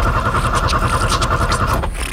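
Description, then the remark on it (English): A truck engine with no power cranks with a steady, rhythmic chugging for a couple of seconds, loud, but never catches and roars to life before trailing off. “I'm about to fire up the chuckle truck and go on a new adventure.”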